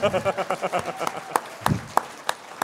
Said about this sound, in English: Oh, there he is right there. Hi. Oh, wow. Always worth a clap. Always worth a clap.